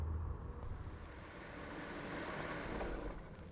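A car pulls up at an oil rig at night, its engine rumbling at a steady, low idle, fairly quiet, with a broad wash of road noise and no voices.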